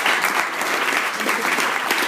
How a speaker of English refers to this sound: Excellent. Thank you. Let's have a round of applause for him.